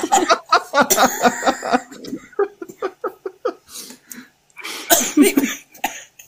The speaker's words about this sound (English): Excuse me, I'm coughing.